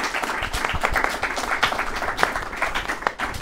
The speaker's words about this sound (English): And I want to give our speakers a huge round of applause. Thank you so much, gentlemen. It's been a true pleasure.